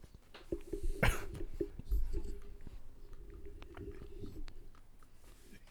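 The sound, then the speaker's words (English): A sharp crunchy bite into food, followed by several seconds of wet chewing with small irregular clicks and smacks, fairly quiet, with no one speaking. “Go ahead and take that bite.”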